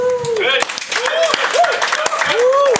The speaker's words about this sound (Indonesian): Boleh dong tepuk tangan gue. Dan itu sih? Itu tepuk tangan dua tangan dong, kok satu tangan? Sakit yang satunya.